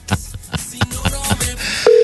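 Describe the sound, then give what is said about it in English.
A series of quick clicks and taps as an outgoing call to a resident of Omaha connects gives way to a steady electronic ringing tone on a phone line. The tone is loud, with no one speaking. “Oh, it's ringing.”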